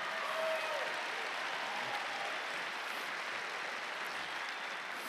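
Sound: audience clapping hands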